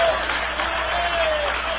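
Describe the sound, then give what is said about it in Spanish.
A church audience claps loudly and steadily for the Lamb of God, a dense, continuous wash of many hands with no pauses, and a faint cheer or shout rising briefly over it. “Dale un aplauso lo más fuerte que puedas al Cordero de Dios.”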